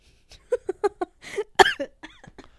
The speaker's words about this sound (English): So you stopped my rant to cough.